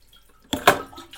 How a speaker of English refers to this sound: I got a pre-courtesy flush so this whole place doesn't end up smelling like the den of a lactose intolerant T-Rex!